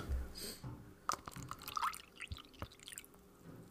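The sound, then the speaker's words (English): Lemonade poured into a glass, a few seconds of uneven splashing and dripping with small bright spatters, faint background murmur underneath. “Do you want some water or lemonade? Ma, lemonade.”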